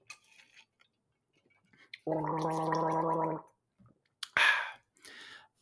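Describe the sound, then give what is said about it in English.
Someone takes a drink of water, making a steady, buzzy gurgling sound for over a second, followed by a sharp breathy exhale and a few faint mouth clicks. No one speaks. “Let me take a little drink of water first.”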